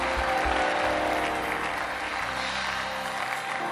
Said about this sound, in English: Come on, clap your hands and praise.